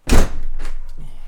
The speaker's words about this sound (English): If that door knocks one more time. Uh-huh. Why would the door knock? It's inanimate. Somebody knocks on that door.